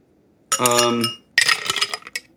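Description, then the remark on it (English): Small ice cubes tumble into a tall Collins glass being prepped for a cocktail: a bright ringing chime, then a quick run of rattling clinks that fade over a couple of seconds. No one speaks. “I'm going into my tin, and then I'm going to prep my Collins glass. To prep the glass, huh? And I'm just using little ice cubes for this.”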